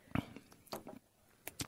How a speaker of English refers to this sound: Here we go. I'm going to taste the coffee.